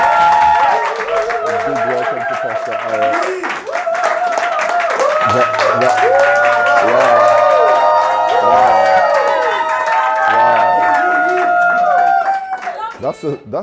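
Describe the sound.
An audience breaks into loud, sustained applause for a pastor, with whoops and cheering voices mixed in, keeping up a dense clatter of clapping for about twelve seconds before it thins out and fades.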